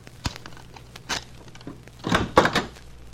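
Several muffled knocks on a hotel room door, the first ones sparse and spaced apart, then a louder cluster of thuds and rattling near the end; no voices.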